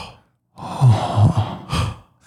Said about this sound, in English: Mouth breathing.